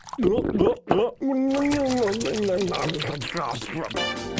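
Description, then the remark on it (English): Wet gurgling and sloshing as someone chews a mouthful of water, mixed with voiced humming and grunting sounds over about four seconds. “I keep telling you, you gotta chew your damned water. Like this.”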